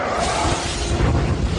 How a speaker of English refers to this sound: First of all, a grenade doesn't blow up in a huge fireball explosion like that.